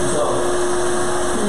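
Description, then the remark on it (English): An old shop vac with not much suction runs steadily on strips of carpet on a truck floor, giving a constant, fairly loud whirring roar with a steady mid-pitched motor hum and no change in intensity. “It's just an old shop vac.”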